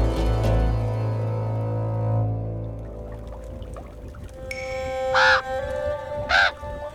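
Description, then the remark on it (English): A raven lets out two loud, harsh caws about a second apart, following a low droning tone that fades away beforehand. “A raven speaks.”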